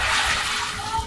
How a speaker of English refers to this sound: Whoa. Oh, you're pouring the pasta in? Yeah. This is going to be a good pasta salad. Didn't drop any, so.